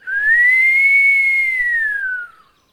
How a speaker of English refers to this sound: Look round, and there he be, standing by the fence. I ain't seen this man in years. He whistle, do a long whistle.